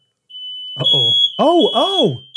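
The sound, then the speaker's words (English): Smoke detectors sound a steady, piercing high-pitched tone that holds without a break throughout, while people talk loudly over it. “Oh, smoke detectors are going off.”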